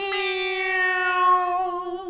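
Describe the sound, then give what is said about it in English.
A single long, drawn-out cat meow with a clear, steady tone that dips slightly in pitch as it fades, fairly loud with no other sounds around it. “Meow.”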